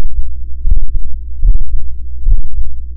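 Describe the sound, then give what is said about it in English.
A wearer's heartbeat picked up by a vest woven with acoustic fiber, a wearable fabric microphone sitting directly on the body: three muffled, low thumps at a steady pace, each with a soft double beat, over a constant low rumbling hum. “In another experiment, they also wove the acoustic fiber into a vest that could pick up the wearer's heartbeat.”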